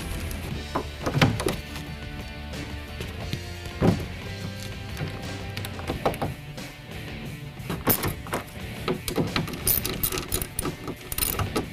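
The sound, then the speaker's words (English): Handling noises as a newly wired loudspeaker is pushed and seated back into a car door: irregular thunks, clicks and light rattles of plastic and metal, with no one talking. “I'm going to put it back into the door.”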